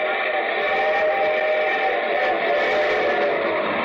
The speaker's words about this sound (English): Here comes our star-studded show train.